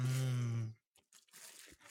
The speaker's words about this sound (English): I'm glad we're talking about that right as I bite into a pork bun.